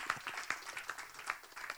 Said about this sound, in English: So once again, a round of applause to the fathers in the house and the fathers-to-be.